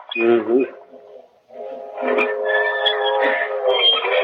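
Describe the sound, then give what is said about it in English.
A train whistle sounds a long, steady, chord-like wail of several blended tones lasting a few seconds, following a brief harmonic burst and a short pause. “Nowadays, whenever I hear a train whistle, I think of all the boys that are over there.”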